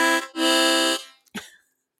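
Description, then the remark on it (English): A loud novelty prop horn gives two toots, a short blast followed by a longer, steady buzzy honk rich in harmonics, then a brief trailing squeak. “I have props. Yeah, I have props. Just in case I have nothing to talk about, I'll just give it a little toot toot.”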